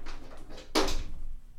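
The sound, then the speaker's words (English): A dog scratching at a door: a few quick, raspy scrapes followed by one louder, sharper scratch, with no one talking. “dog scratching at the door.”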